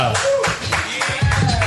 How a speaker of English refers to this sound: Ladies and gentlemen, a round of applause